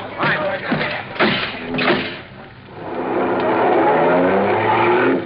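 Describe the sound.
Indistinct voices and bursts of noise give way to a loud, steady roar of car engines accelerating, their pitch climbing as the vehicles speed away in pursuit of a fleeing car.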